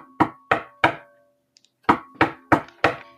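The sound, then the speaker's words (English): Someone knocks firmly on a door, three sharp raps, a brief pause, then four more in a steady rhythm. The knocks are loud, with no voices. “You hear a knock at the door.”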